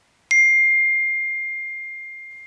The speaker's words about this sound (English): I get a text on my family group chat.